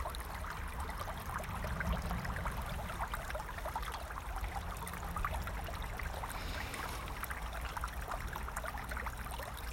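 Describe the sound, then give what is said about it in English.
Steady creek water flowing and splashing over rocks, a continuous burble with fine trickling detail and no pauses, heard alone without any voices. “How about just listening to this water here by the creek?”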